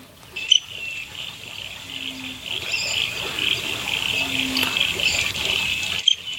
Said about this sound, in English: That's it. It's still like cricket. Sounds like a cricket. So you think that's a bit sad, that one. Such a beautiful-looking duck, doesn't have much of a call at all.